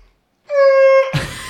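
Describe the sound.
A woman's voice in a park imitates a train whistle with one loud, steady, sustained wailing tone held for about half a second, then breaking off into a rough, breathy burst.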